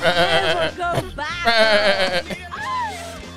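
Several loud, quavering goat bleats overlap one after another over a low rumbling background, with a higher, wavering cry near the end.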